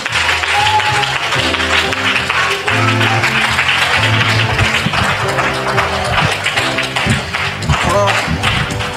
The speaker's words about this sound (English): Come on, give God a clap, pray.